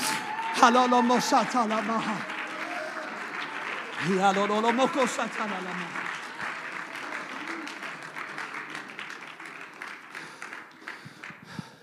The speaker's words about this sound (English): Oh, clap your hands and rise to your feet and shout unto God.